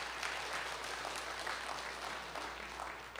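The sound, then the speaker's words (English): A crowd claps steadily for several seconds, a dense wash of overlapping hand claps at an even, moderate loudness with no voices rising above it. “If you're willing to do that, stand, clap your hand, do something.”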